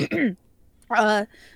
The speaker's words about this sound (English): Hold on. Sorry to cough.